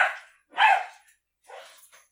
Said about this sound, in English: My dogs just absolutely decided to fight it out. Yeah, we could tell. They were not giving up either. I don't know who won, but it was exciting.